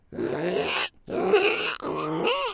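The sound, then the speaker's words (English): A person imitates a pig by squealing on an inhale, the way they voice a creature, making three loud, raspy squealing grunts, each lasting under a second with short gaps between. No talking. “Well, if someone says do a pig sound, they might go reet reet, or they might go with an inhale, and that's how I'm doing this creature”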